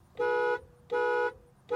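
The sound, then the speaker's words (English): A car horn honks in short, evenly spaced blasts, two full beeps and the start of a third, loud with a bright, buzzy tone and no voices. “And thank you for exploring car horns with us.”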